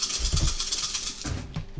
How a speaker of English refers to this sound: That's a lot of dice. That is a lot of dice.